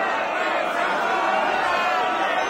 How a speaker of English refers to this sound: This crowd of fight fans is going wild